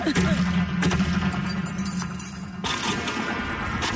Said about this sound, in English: The cheer squad bangs the megaphone. The Bearcat holds up his ring and the medals, and they cling together.